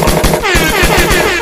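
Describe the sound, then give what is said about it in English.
A loud gunshot sound effect: a rapid, steady string of booming shots, roughly eight per second like automatic fire, with no one talking over it. “Gunshots, please.”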